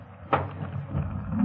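A single sharp metallic-wooden clack near the start as someone pulls back the bolt on the inside of a locked dressing-room door, followed by a low rumbling scrape and muffled background noise.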